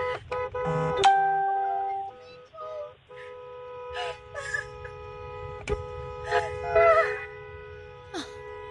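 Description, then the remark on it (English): Car horns blare in long, overlapping blasts while neighbors outside whoop, scream, holler and cheer in scattered bursts, a noisy parade-style welcome-home street celebration. “pretty much like a parade style of all the neighbors outside honking horns, screaming, hooting, and hollering.”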